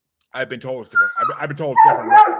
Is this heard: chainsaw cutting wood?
no